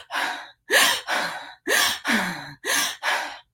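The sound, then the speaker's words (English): Rapid, panicked, panic-attack-style breathing done as a breathing exercise: about seven loud, airy gasps and exhales in quick paired bursts, each roughly half a second, with short pauses between and no talking. “So if you were to breathe, let's say I had you breathe in like panic attack style, right?”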